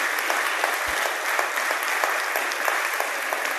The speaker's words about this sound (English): Aren't you thankful that God spared you? Won't you give God a hand clap of praise for sparing you?